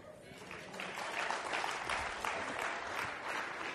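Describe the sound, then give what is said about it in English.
An audience applauds steadily during morning worship, a dense wash of many hands clapping together at a fairly loud, even level throughout, with faint voices mixed in beneath the clapping. “Acompaña ese aplausos con alabanzas. Worship the Lord as you clap to God this morning.”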